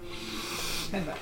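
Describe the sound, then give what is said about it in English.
A voice produces a wheezy, hissing heavy breath, a steady rasping hiss over a faint low groan, with a brief voiced catch near the end, lasting about a second. “Kind of a wheezy gas.”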